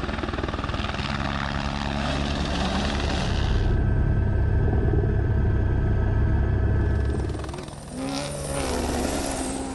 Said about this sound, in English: The best helicopter in the world for filming is this guy here. It's an Airbus H125. It's the Formula One of the helicopter.